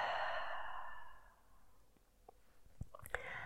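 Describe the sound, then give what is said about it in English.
A long, full breath out during a Pilates breathing exercise, breathy like a sigh, gradually trailing off after about a second into near-silence with a few faint mouth clicks. “Take one more breath here, inhaling deeply and exhaling fully.”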